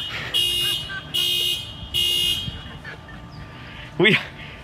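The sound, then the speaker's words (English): A car alarm blares in three loud, evenly spaced buzzing blasts, followed by a short rising whoop, with faint background noise underneath. “I just want to give a shout out to the Carter family that it wasn't your car alarm, because it's been about 85% on you guys.”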